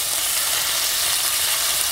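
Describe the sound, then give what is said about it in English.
Steady, loud sizzling of steak frying in a pan, a dense crackling hiss that holds evenly for the whole two seconds with no voices over it. “How do I know if it's cooked through?”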